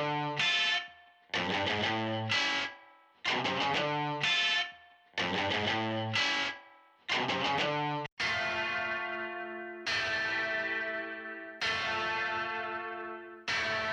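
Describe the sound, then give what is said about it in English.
Two distorted electric guitars, lead and rhythm, with spring reverb play choppy, rhythmic chord stabs, then switch to big sustained chords that ring out and decay with a washy reverb tail. Loud, with no voices. “Both electric guitars with sort of like a distortion spring reverb kind of a sound on it.”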